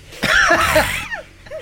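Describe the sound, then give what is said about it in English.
A man's voice just off camera imitates heavy, raspy breathing: one drawn-out, breathy gasp with a rough, throaty edge, trailing off into a softer wheezing exhale. “just off camera, his voice is like heavy breathing.”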